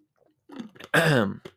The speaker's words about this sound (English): Just had to get some water.